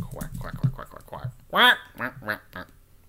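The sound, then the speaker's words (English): A person imitates a duck with one loud, nasal, raspy quack after a stretch of quieter voiced talk, followed by a few softer vocal sounds. “It comes from the characteristic harsh sound made by a duck.”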